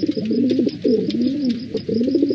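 A pigeon coos in low, throaty, rolling phrases, three or four swooping calls run together with barely a pause, loud and clear with no talking over it.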